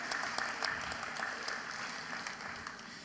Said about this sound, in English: I think it'd be great to just give our kids another round of applause. I think they've been brilliant this morning. Well done, kids.